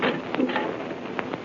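A room door at the head of a staircase in Egypt being unlocked: a few short, sharp metallic clicks and rattles at uneven intervals, fairly quiet, over a steady faint hiss with no voices.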